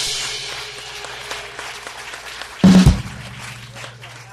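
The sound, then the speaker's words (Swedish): An audience at a talk show on the roof of Kulturhuset in Stockholm applauds the evening's host steadily, a dense, crackling clatter of many hands that holds its level throughout, broken by a short, loud, low burst about two-thirds of the way in. “Mina damer och herrar, från hjärtat av Stockholm, välkomna till Kulturhusets tak och ge en applåd för kvällens värd.”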